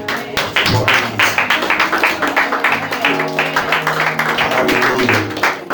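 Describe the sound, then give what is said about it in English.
An audience gives the Lord a hand clap, clapping loudly and steadily, a dense stream of overlapping sharp claps continuing throughout, with scattered voices and low murmuring mixed underneath. “Y'all come on and give the Lord a hand clap.”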